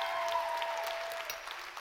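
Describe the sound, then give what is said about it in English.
A church audience applauds to welcome first-time visitors at a morning service, steady, dense hand clapping, a continuous crackle of many hands at an even level, with no voices over it. “Give them a huge hand clap.”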